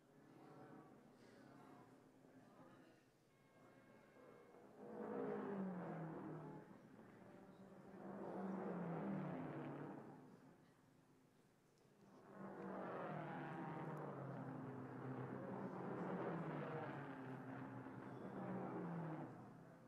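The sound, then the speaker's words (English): A race car at a pit stop, its engine revving in several loud, surging bursts over a steady mechanical rumble, with brief lulls between as a crew of four, including the driver, refuels it and changes its tires; a crewman polishes the windshield before the car moves away 67 seconds after stopping. “The tires are changed at last. A crewman polishes the windshield as Holland moves away”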